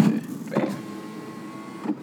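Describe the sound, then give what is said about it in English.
An electric car window motors along steadily for about two seconds, a mechanical whir with a faint whine, bracketed by soft thumps as it starts and stops, as someone inside the car operates the window on their side. “I hit the window on this side.”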